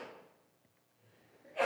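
human body sound, sneeze

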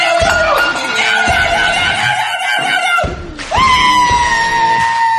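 human body sound, person screaming in fright

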